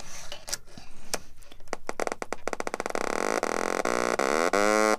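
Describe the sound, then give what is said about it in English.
A few sharp clicks and crackles as a littleBits power bit is snapped to an oscillator module and a speaker, then a loud, buzzy electronic tone rich in harmonics, its pitch sliding up and down in sweeps as the oscillator is tuned. “So what I have is a power bit, which is blue, and I'm going to snap it into an oscillator, which is generating the sound wave, and a speaker. And now I'm tuning the oscillator.”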